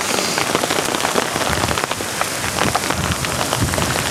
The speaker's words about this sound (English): Oh my gosh, I've never really stepped on hail. That's kind of fun. It's really small hail, so nothing to be concerned about, but still hail, nonetheless.